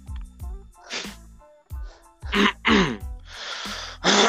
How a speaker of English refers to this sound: Oh my god, I hate it. I just constantly have to clear my throat. It's like, I'm not sick or anything, but it's well, just...